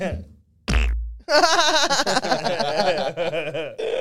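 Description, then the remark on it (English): A short, wet-sounding fart sound effect from an emoji, lasting about half a second, immediately followed by loud, sustained laughter from several voices. “I love that fart fucking emoji.”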